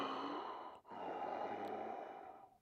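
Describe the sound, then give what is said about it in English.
Heavy, wheezy breathing on a phone line, two long noisy breaths with a brief catch between them, slightly muffled, with no one speaking. “I waited, and again, there was nothing, just some wheezing or heavy breathing.”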